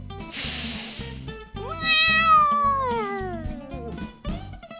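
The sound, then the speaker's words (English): A single long, drawn-out cat meow that rises and then slowly slides downward, heard fairly loud over a steady, rhythmic low background beat. “the people's cat!”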